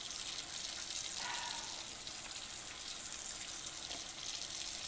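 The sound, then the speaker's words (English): Water runs steadily from a tap, a constant hissing splash that stays even and fairly loud throughout, with no voices. “I did this a little differently than I normally do with the water, turning the water off and stuff, so I'm guessing that's what took me longer.”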